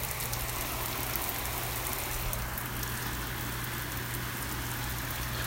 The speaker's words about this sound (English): And here in Raleigh, North Carolina, it's raining. Can you hear it?